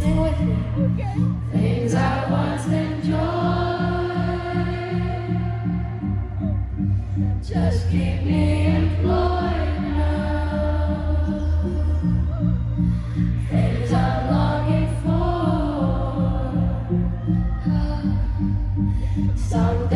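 A live concert recording of a song: sung vocals over a steady, pulsing band accompaniment, loud and full throughout, with a crowd singing along.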